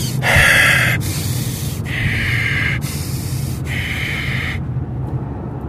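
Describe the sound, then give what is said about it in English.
A person imitates stifled, heavy breathing: a steady run of about five harsh, muffled breaths in and out, with no talking. “And I'm also trying to be quiet because there's a guard. So I'm breathing like...”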